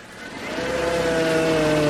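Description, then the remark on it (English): A car engine starts and revs up, a low steady hum with a rising tonal whine that grows louder over two seconds. No one speaks. “I start the car.”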